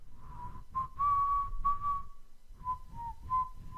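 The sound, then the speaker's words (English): A person whistles a simple, old-fashioned melody, the pure tone sliding between held notes with a short pause midway, over a low rumbling background. “I'm just hearing that an old man's voice whistling or singing that tune from down the hallway.”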